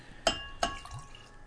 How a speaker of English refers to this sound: Greg's rinsing out his glass with a little bit of the Old Soul wheat wine